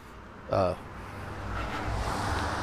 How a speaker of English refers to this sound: Oop, car's going to come by, so...